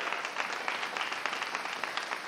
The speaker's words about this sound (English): So I want to applaud every father that is in church today.